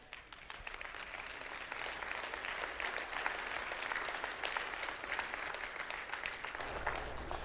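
A crowd in a church applauds steadily, many hands clapping in a dense, continuous patter that holds at an even loudness for several seconds without any voices.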